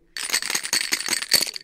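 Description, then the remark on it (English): Dice rattle rapidly inside a cup during a demonstration of the table game Pai Gao, a dense clattering burst of small hard clicks that starts abruptly and continues steadily, fairly loud. “Shake the dice, please.”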